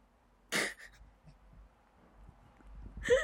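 A dog named Russ licks right against the microphone: two loud, wet bursts roughly two and a half seconds apart, with faint smacking and snuffling in between and no talking.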